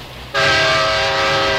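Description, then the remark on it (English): A train rumbles by, then a loud train horn blares suddenly, holding a steady multi-tone chord over the continuing rattle and roar of the passing train. “So, not going to hear about the railroad strike on this show. Except, of course, for this.”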